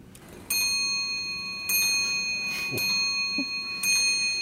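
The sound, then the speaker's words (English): Old, still-working clocks from the Foundling Hospital chime with clear, ringing bell tones that linger, struck several times at uneven intervals, while soft ticking runs underneath. No one speaks. “All the clocks that come from the Foundling Hospital that still work, that chimed for the children and chimed for us.”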